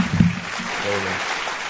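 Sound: applause sound effect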